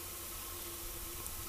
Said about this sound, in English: Shifts again, kind of mechanical drone, static, tuning of radio, shortwave.